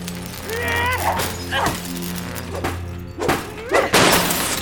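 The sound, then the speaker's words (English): A desk chair repeatedly smashes computer equipment: four or five loud crashing, shattering blows about a second apart, over a steady electrical hum with brief high warbling whines. “Lisette briefly regretted being unable to damage his system in a more subtle way than complete destruction, but then picked up one of the desk chairs and proceeded to smash all of the equipment she saw.”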